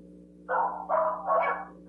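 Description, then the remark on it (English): Dogs bark in the background, four drawn-out barks in quick succession over a steady low hum, and no one speaks. “Well, while my mom's rounding off those dogs back there, it's a wild canine cheeseburger and liquor party.”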